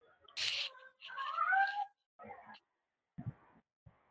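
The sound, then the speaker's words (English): A cat meows a few times at low volume: a short breathy cry, then a longer drawn-out wavering meow and a brief final one, followed by a couple of soft thuds. No talking. “As my cat's chiming in here, I don't know if the mic's picking that up”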